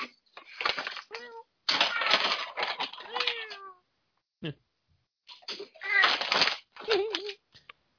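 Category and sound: animal, cat meowing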